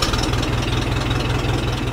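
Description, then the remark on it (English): An old vehicle engine, a working 1956 Ford tractor or 1967 Volvo sports car kept in running order by a maker in Maine, idles steadily and loudly, its low rhythmic chug and rattling knock holding constant throughout, with no voices. “Like a working 1956 Ford tractor or a 1967 Volvo sports car that Waldeyer keeps in perfect running order”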